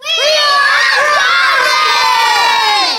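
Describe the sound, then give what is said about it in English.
A crowd of young voices screams the phrase "we are drowning" loudly in unison, many overlapping shouts rising and falling together for a few seconds, sustained and energetic without a break. “So the first thing they say, and you have to scream this all together, we are drowning.”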